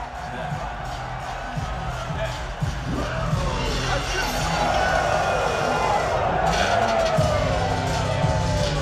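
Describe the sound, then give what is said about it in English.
A large stadium crowd in Prince Valley Stadium cheers in a steady, dense roar of many voices that swells louder partway through, with scattered shouts and whoops rising above the din. “A great start, I thought, and also the crowd is electric in Prince Valley Stadium, which is a good omen for later in the show.”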